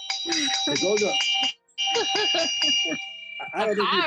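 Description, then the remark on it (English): A bell is struck and rings with a bright, sustained metallic tone, briefly cut off and then ringing again, while voices talk loudly over it throughout. “We got to get the bell.”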